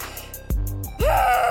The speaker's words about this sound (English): Do you need to scream it out?